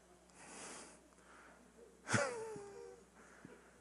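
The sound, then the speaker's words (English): A single sneeze: a breathy intake, then a sudden loud burst that trails off into a short voiced tone. No one is talking. “God bless you.”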